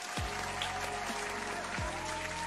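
A steady round of applause, with dense, continuous clapping at an even loudness for a couple of seconds and no voices over it.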